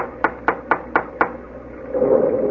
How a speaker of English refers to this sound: Well, no, we've come this far. Go ahead and knock at the door. I promise you, if a ghost answers, I won't be surprised.